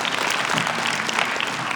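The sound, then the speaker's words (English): An audience claps steadily, a dense wash of many hands with no individual beats standing out, sustained at an even loudness for the whole stretch. “Yeah, you can clap.”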